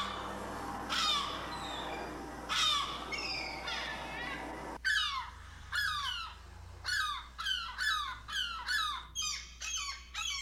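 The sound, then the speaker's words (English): Squawking calls of Feagle the Seagull, loud: a few spaced, harsh cries at first, then a quicker run of repeated squawks, with no talking over them. “Fall in love with the great noises Feagle can make.”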